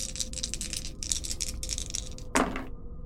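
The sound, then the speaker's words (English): Dice, an action die and challenge dice, clatter and rattle in a rapid burst of clicks as they are rolled, ending with a sharper knock, fairly loud, with no talking. “8 on the action die, and 8 and a 1 on the challenge dice is a weak hit.”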